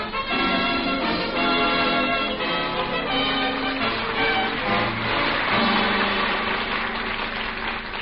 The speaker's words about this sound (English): Hey, pipe down! Cut out that noise! But it's curfew! Hey, who's making all that noise down there with that bell?